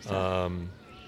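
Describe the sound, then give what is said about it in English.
A single drawn-out meow from a little kitty, fairly loud, its tone sliding down before fading into quiet background noise. “Little kitties going by.”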